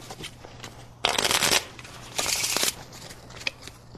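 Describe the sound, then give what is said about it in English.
Two quick bursts of a deck of playing cards being shuffled during a card trick, a crisp riffling flutter, separated by quieter handling and small taps of the deck. “All right, I'm going to cut it into the deck. Shuffle the cards.”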